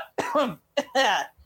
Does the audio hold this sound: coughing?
yes